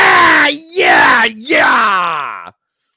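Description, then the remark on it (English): A voice mimics a wrestling ring announcer's screamed introduction of a wrestler: three loud, drawn-out wordless yells that swoop up and down over a couple of seconds, then silence. “Not a huge fan of how they have the announcers screaming the announcement of the wrestlers now.”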